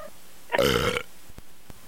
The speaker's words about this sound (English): That is one sick feline.